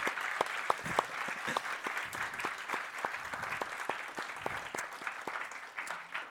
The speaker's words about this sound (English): So let's give one more round of applause for her and for the kids.